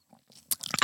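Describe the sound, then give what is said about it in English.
A quick sip of lukewarm 19 Crimes Martha's Chardonnay wine: soft wet mouth clicks building into a brief airy slurp, heard alone with no talking. “Chardonnay fan at all, but I just took a sip.”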